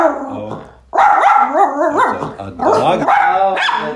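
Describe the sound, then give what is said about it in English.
Frankie, a dog, barks and yips excitedly at another dog seen through the window, trying to play, in several quick, overlapping bursts, its high, whiny voice rising and falling with a playful edge, with no one talking. “So while Frankie is checking out a dog through the window and trying to play, we'll take a quick short break.”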